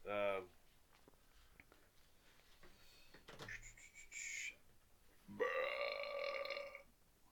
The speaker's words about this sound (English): True or false? Did that burp just happen? True.